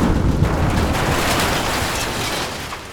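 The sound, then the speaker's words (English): A falling star, a huge, long cylinder from Mars, crashing to Earth on Horsell Common just outside Woking: a loud, continuous roaring rumble with deep booming low end and hissing noise on top, holding steady for about three seconds before easing slightly, with no voices. “And it's crashed to Earth here on Horsell Common.”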